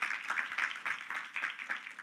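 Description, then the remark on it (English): An audience gives a man a big, warm round of applause, a dense, steady wash of many hands clapping together that carries on throughout, fairly soft. “Give him a big warm round of applause.”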